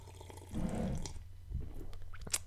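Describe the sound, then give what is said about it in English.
Quiet sips of beer with a wet slurp and liquid sounds, followed by a few small clinks and a swallow, no one speaking. “Let me have a sip of my beer.”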